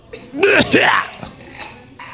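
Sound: coughing and throat clearing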